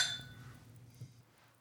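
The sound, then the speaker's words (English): A bright clink of beer glasses touching in a toast, ringing briefly with high glassy tones before fading, followed by a soft low thump and quiet background noise. “But cheers to friends from foreign lands bringing beer.”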